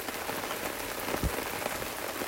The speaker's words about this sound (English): It's raining again. It's the 3rd of January, 2021. So far, 2 out of 3 days we've had rain.